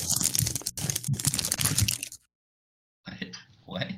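Loud, crackly crunching of someone chewing crunchy food, a dense two-second burst, a brief silence, then more crunching resumes.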